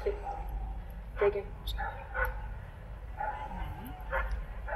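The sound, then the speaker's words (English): A very young dog barks and yips in short, sharp bursts, about five of them at irregular intervals, over a steady low rumble of wind or handling noise, in an arena it has never been in before. “So very young dog, never been in arena before, so we'll just see how this goes with him.”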